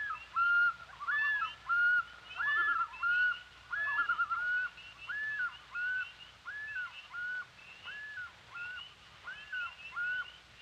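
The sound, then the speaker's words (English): A loon calls over water in a long series of rising and falling wavering notes, repeated in a steady rhythm, clear, with no one speaking. “The calls of the loon, and it has several calls in its repertoire, have come to symbolize Canada's wilderness because of their lonely, haunting quality.”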